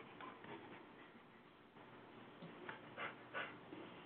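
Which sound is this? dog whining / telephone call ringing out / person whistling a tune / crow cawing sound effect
dog whining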